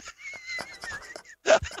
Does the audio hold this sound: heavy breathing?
no